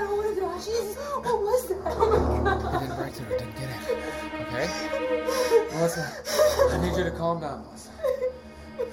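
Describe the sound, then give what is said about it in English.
A woman's panicked rapid breathing mixed with whimpers and gasps, the distressed sounds continuing unevenly for several seconds with a few louder shaky bursts. “Just slow down, okay? Slow down your breathing.”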